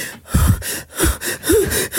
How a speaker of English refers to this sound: You just tried to armpit fart. Look at how out of breath he is. I've never seen somebody this out of breath before.